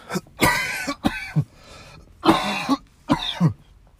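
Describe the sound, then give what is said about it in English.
Four harsh, throaty coughs from a person with a nasty cough come in two close pairs, loud, with brief quiet gaps between them and no talking. “It's true, I have a cough.”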